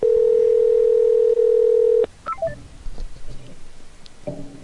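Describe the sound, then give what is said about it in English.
Telephone line sounds on an outgoing call: a loud, steady tone holds for about two seconds, then cuts to a few quick beeps and soft, muffled line noise. “I like the part of the show where the phone rings.”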